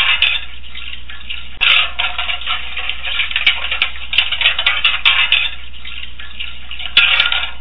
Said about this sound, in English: Okay, sounds like we had a lot of dishes tonight.